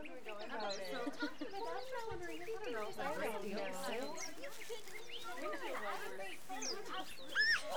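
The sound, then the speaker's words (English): A busy chorus of birds chirping and calling over one another outside a tent as morning sunlight beams in, steady, with a few sharper, higher chirps standing out near the end. “The birds are chirping, and the sunlight is beaming through my tent window.”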